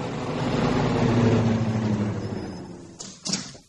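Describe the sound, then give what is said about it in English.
A car engine rumbles as the car approaches, its broad noise swelling and then easing off as the vehicle settles, followed by a couple of short clunks like a door near the end. “There's a car coming.”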